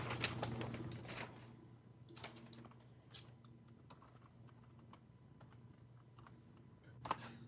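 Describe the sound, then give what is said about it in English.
Rapid clacking of computer keys while entering damage in a game, in a quick flurry at first, then slowing to a few scattered taps and a final burst, over a low steady hum with no talking. “It's a lot of typing for damage there”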